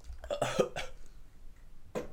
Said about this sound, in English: If you heard me coughing just then, remember, ladies and gentlemen, I am sick.